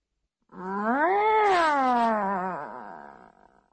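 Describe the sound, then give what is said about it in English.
A person imitates a long, drawn-out, dissatisfied cat meow, rising in pitch and then sliding down into a whiny moan for about two seconds, with no other talking. “Okay, then we have the dissatisfied meow.”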